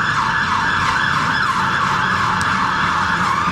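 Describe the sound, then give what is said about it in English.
A fire engine siren wails continuously and fairly loudly at a major junction on King William Street in the City of London, its pitch sweeping slowly up and down over a low rumble of street traffic. “And also, we've got fire engines, we've normally got a helicopter, but this is a major junction.”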